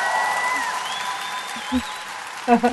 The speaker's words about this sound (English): Did you like that applause? I did. I seldom get that.